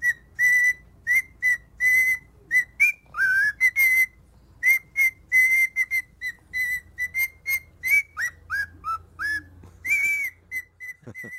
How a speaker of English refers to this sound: This is a video of a parrot singing to a dog. And the dog is really not interested.